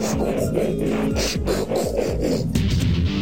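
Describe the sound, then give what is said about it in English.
A voice mimics a toy robot transforming: about three seconds of continuous, loud, raspy mechanical whirring and grinding, with buzzy pitch glides rising and falling in quick bursts. “The sound I like was the... That was hot. When they transform.”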